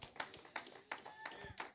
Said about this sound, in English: Can we just give God one more round of applause, please?